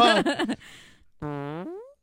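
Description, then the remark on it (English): Two buzzy fart sound effects play with no one talking: a short wobbling blurt, a brief pause, then a longer, steadier toot that bends upward in pitch at the end. “I could just fart.”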